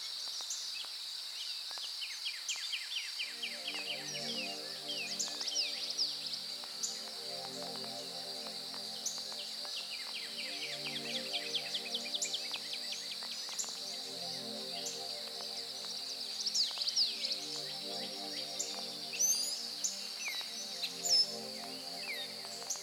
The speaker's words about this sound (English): The air is still, and the forest is alive with the sound of birds.